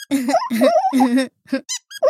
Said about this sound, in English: He's farting. Sorry, I had broccoli for breakfast again. It makes me gassy. What? That's what caterpillar farts sound like?